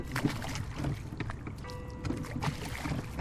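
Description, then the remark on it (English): Two people row a small wooden boat with old, half-rotten oars that dip and pull through water in a steady rowing rhythm, with splashes and wooden knocks against the boat, over a soft wash of wind and water. “start to row”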